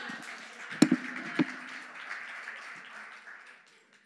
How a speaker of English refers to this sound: Come on, somebody, let's clap our hands.